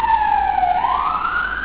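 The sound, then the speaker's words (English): A police car siren wails loudly and steadily, its pitch sliding down and then sweeping back up in one continuous tone, with no voices present. “Yeah, police car sirens are really horrible.”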